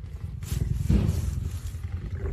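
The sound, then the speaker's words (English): A big cat roars with a deep, rumbling growl that swells to its loudest about a second in, then trails off into lower, breathy grumbling. No voices. “Let's just be clear, you know, it is possible that Justin Friedkin will die from a big kitty.”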